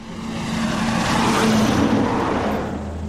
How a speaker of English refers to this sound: Coal truck roars to the foot of Blair Mountain through the little community of Blair, or what's left of it.